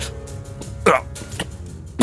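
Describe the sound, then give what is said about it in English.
A person vocally imitates a dragon's short, hacking cough, like hacking up a hairball: one harsh burst followed by a couple of smaller throaty clicks, with no words spoken. “He's just gonna cough like he's hacking up a hairball.”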